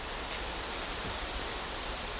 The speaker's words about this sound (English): Why does it pour so much fucking head? Oh, well, I thought I was... Like, I'm being gentle with this, and it's pouring so much fucking head.